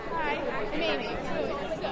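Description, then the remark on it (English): A campaign rally crowd fills the air with overlapping chatter, many voices talking at once in a steady, dense babble with no single speaker standing out, as attendees turn to the person next to them to greet and introduce themselves. “This person on stage asks everybody in the crowd to turn to the person next to them and introduce themselves, just like they do inside church.”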